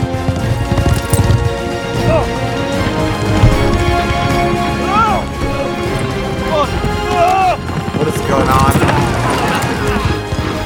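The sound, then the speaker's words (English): Horses gallop with a rapid, steady clopping of hooves that stays loud throughout, mixed with a busy, noisy background while a voice speaks over it. “We jump on the horses and ride away. But the horses, they're moving.”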